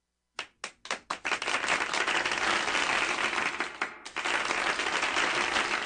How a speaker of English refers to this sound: So if we're liking this particular subject, I want to pause right here, draw a line in the sand, start applauding now.